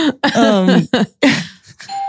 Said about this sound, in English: Oh my God, someone's ringing my doorbell. No, wait. No, they're just probably going to drop something.